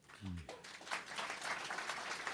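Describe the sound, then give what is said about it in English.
An audience breaks into a round of applause, dense steady clapping that swells and holds for a couple of seconds after a brief voiced sound at the very start. “A round of applause arguing in favour of tax.”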